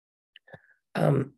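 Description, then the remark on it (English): A single abrupt cough bursts out after a moment of faint breathy sounds, loud and brief before it cuts off. “Are you noticing, like how I just coughed, are you giving yourself permission to notice when your body is asking for a break?”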